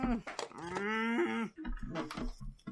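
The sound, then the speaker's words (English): A man's voice imitates the sound effects of a retro arcade video game: choppy vocal bursts, a long droning held tone lasting about a second, then more short, clipped noises. “He sounded like an arcade machine of some kind. Well, that's because it was obviously Donkey Kong, the the video game.”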